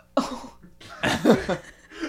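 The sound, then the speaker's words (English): A brief, throaty burp followed by a longer, louder, rumbling one with a low voiced tone, then a faint trailing sound; no talking. “The burp was funny, but then the surprised face he made afterwards was better.”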